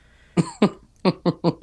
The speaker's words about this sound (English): He's like, oh guys, oh yeah, you killed my father, oh I gotta cough now.